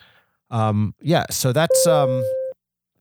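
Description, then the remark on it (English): A voice imitates a dial-up modem connecting: about two seconds of warbling tones, hissy bursts and a held beep, loud, with no real words. “And if you don't know what a modem sounds like, that's for all you old-timers out there”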